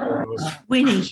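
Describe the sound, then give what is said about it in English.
Small dogs growling and snarling at each other in two rough bursts with a short gap between them, loud, like a scrappy little scuffle. “We're having a fight now.”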